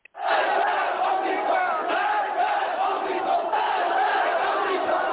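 A large crowd of people rising up against the Shah in 1979 shouts in unison, a dense, steady roar of many voices chanting 'Death to the Shah' and 'Death to the American Satan' with a rolling rhythm, loud and sustained throughout.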